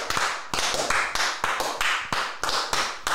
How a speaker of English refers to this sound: Welcome. A round of applause.